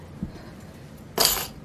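A set of keys jingles and clinks briefly, a bright metallic rattle lasting about a quarter second after a faint soft bump, with quiet otherwise.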